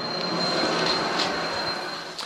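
A train rolls along the railway track, a steady loud rumble of wheels with a thin, high metallic squeal running through it, continuous for the whole stretch with no voices.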